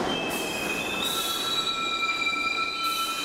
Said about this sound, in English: We all know what that is. What is that? It's the screams from hell. No. It's the train. It's the train coming to a stop, I think. Yep. Exactly. Ugh. Those are the shitty-ass brakes because not all conductors do that.